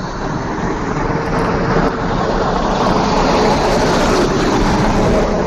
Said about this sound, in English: What the f*** was that? Was that an F-111? Truck.